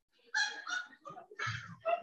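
A quick run of short, snorty sneezes, fairly loud, coming in several sharp bursts over a couple of seconds with no talking.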